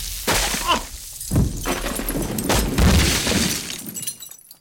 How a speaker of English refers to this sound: There was an explosion. The doors to the study were ripped from their hinges and went flying across the room, pulverizing my uncle's collection of